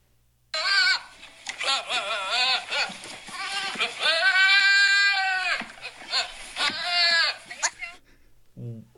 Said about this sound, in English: Horse? You do not, you don't sound so good. That's not his usual neigh. Yeah. No, that was creepy.